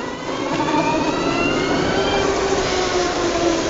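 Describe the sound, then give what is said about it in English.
A Harley-Davidson electric motorcycle motor whines steadily as the rider pulls away and accelerates, its thin tones gliding slowly upward in pitch over a constant rush of wind and road noise, fairly loud throughout. “I'm pulling away in it now, and you've got a slight bit of engine noise.”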